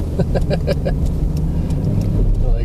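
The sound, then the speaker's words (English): A car engine hums steadily while driving at -7 degrees, with a dog riding in the back seat, a constant low rumble filling the whole stretch, with a faint voice briefly audible near the start. “He's all excited that he gets to ride in the car, but not the back of the truck.”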